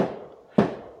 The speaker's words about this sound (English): I was gonna say, you hear it? It's not gunfire going off around my house. We're recording this right before the 4th of July, so fireworks are going off like crazy around here.